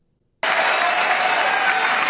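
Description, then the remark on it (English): Loud, sustained applause from a large pro-Trump audience for Donald Trump bursts in abruptly after a brief silence and continues steadily as a dense wash of clapping. “He got a lot of applause.”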